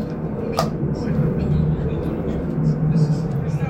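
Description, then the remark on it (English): A loud airplane roars overhead as a steady, heavy low rumble that fills the whole stretch without letting up, with faint voices murmuring underneath. “Good Lord, this plane loud.”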